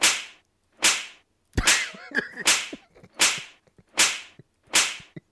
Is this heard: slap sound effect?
yes